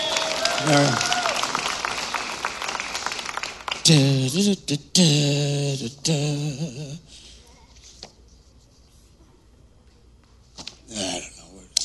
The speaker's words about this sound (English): Everybody, clap for the pretty girl.